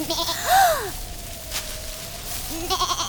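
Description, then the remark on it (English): A llama pod, a fictional plant-animal llama with green fur and leaves sprouting behind its ears, gives two bleating calls, a loud wavering cry followed after a pause by a second, shorter bleat. A faint steady tone hums between them, with no talking. “Wait, a llama?”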